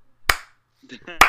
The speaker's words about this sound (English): Wow. Slow clap.